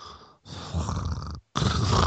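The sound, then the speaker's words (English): A person mimics quiet snoring with three raspy, rattling breaths separated by brief pauses, fairly soft-edged, with no speech around it. “Dude, you snore, but it's not loud. It's just kind of like...”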